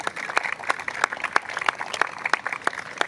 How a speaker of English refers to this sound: Those of you who've read her extraordinary work, start the applause, and anybody else, jump on in.